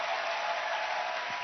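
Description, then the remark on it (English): A worship audience claps for the Lord in a dense, steady wash of many overlapping hand claps, sustained at an even level throughout with no clear individual beats and no voices. “Is that all the clapping we can do for the Lord?”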